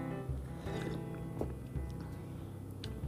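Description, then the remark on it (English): Someone quietly sips a cup of tea, an adrenal tonic from Bliss Energetic, with a few soft slurping sounds and faint clinks of the cup over a low, steady hum. Nobody speaks. “And, I just noticed, I forgot I had made a cup of tea. I just want to take a quick little sip.”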